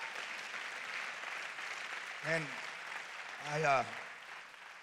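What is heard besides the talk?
audience clapping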